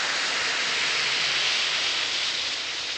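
One or two Speedy Alka-Seltzer tablets fizz steadily in a glass of water, a continuous bright hiss that holds at an even level for the whole few seconds, with no voices.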